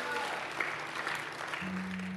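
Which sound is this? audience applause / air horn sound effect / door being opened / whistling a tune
audience applause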